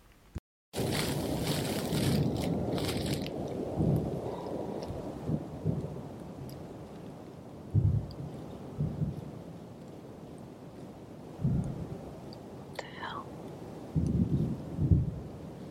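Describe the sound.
Muffled explosions of unknown origin, recorded at night, five or six deep low booms at irregular intervals, rising over a steady rumbling wash of noise. A voice briefly exclaims partway through.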